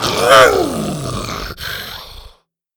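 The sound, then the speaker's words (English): A loud, pained roar from the dinosaur Buck as a dart is yanked from his leg, groaning and bending downward in pitch, breaking briefly, then trailing off in a lower rasping moan before cutting to silence, with no talking. “With a hard tug, Bo yanked the dart free, and Buck roared in pain.”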